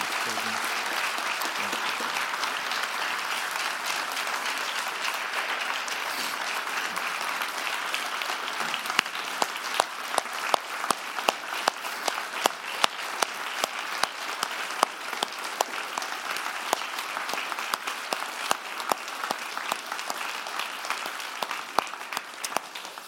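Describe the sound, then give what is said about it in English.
Sustained applause from a church audience at Mount Hope welcoming new members, a dense steady wash of many hands clapping with scattered sharper individual claps standing out, holding at an even moderate level for over twenty seconds with no talking. “Would you give them a round of applause and welcome them?”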